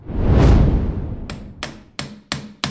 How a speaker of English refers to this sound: Be careful with that hammer